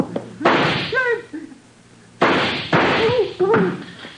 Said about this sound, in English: I think that did it. Come on, let's try it. Huh? Try what? The door, you idiot. I fired at the lock.